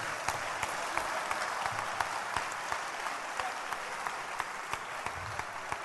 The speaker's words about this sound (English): You are this year, 20, you have come to church the first time today. But if you, let's clap for them because it's good. Clap for them, they've come.